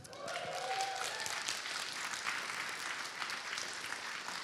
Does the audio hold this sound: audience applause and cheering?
yes